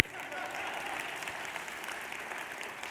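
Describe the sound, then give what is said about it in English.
Steady applause from many hands, a dense crackling clatter that holds at an even level throughout without rising or fading. “is someone applauding? I'm applauding.”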